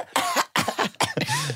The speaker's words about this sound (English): Just cough like a normal person. Just cough like a normal... Yes. How do you cough? That is not how you cough.